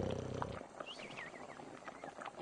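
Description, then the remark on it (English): A man's brief, low, rattling snore rumbles for about half a second, then gives way to faint high warbling whistles that rise and fall over a soft background hiss. No one speaks. “That would be him snoring.”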